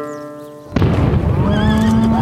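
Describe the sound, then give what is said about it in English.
A horse on a West Texas ranch whinnies sharply and loudly in fear as it rears, nearly throwing its rider, its high, wavering cry rising over a sudden rumbling burst of noise from an explosion, agitated. “One of the horses rears in fear, nearly throwing its rider.”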